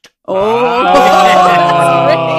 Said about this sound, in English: Oh, that was great. That was great. The special effects budget on this thing. For those listening on the audio only podcast, Tony has just caused the doors to spring open as if by magic.